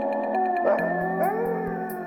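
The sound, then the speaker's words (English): A pack of wolves howl together in long, overlapping, wavering tones that rise and bend, loud, with no talking, forming a steady chorus over about two seconds. “So, like a pack of wolves.”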